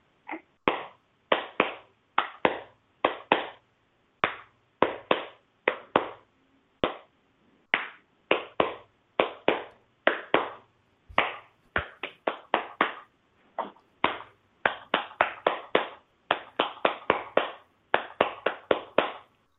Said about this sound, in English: This is a very special kind of Dumpty Dum that I'm just learning. So, this is something I actually figured out with my snorty boy since he's here. If I start clapping with the clapping the Dumpty Dum, he settles down.